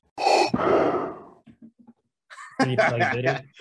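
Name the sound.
imitated heavy respirator breathing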